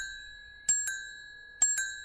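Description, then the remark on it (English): A two-tone bell on a dark red bicycle rings twice in quick double strikes, each pair giving a bright two-tone ding that lingers and rings out clearly before the next, with no talking. “A two-tone bell.”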